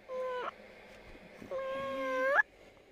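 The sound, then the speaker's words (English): A human voice imitates a drawn-out, moaning cat meow: a short tonal call, then a longer wavering one that rises sharply at the end. Both are fairly loud, with no talking. “It was a cross between a moan and a meow.”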